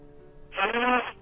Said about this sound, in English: Bless you.